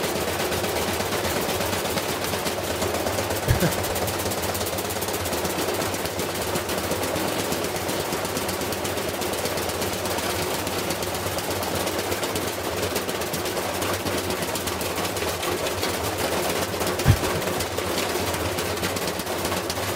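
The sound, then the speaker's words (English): A dense, continuous clatter of heavy objects, thrown in for a YouTube channel, rapidly banging and rattling inside a spinning brand-new $1,200 washing machine, with two sharper, louder thumps standing out against the steady racket. No one speaks. “This is a YouTube channel where they throw things in washing machines and dryers.”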